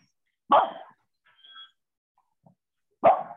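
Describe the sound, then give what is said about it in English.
The speaker's dogs bark loudly: two sharp barks about two and a half seconds apart, with a faint high whine in the quiet gap between them. “Sorry about that. My dogs are broken up.”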